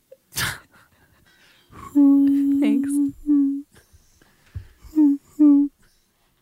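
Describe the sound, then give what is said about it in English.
A voice imitates a train, with a sharp breathy burst followed by a long steady tooting hum and then several shorter, pitched toots in a rhythmic pattern, with a brief spoken word between. “Can you make that train sound effect again”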